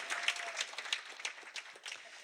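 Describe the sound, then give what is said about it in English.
A crowd breaks into steady applause, a dense wash of many hands clapping with irregular sharper claps popping out, sustained at a moderate level with no one speaking. “Okay, can we give it up for our production team who was here at 7 o'clock this morning?”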